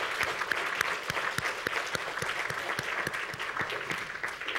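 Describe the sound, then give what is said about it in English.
Steady audience applause for a group of singers after their song, many hands clapping at once, a dense, crackling patter that holds evenly throughout with no voices rising above it. “Let's give them another hand of applause.”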